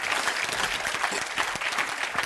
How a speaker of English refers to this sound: Come on, clap your hands and say amen. Will you do that?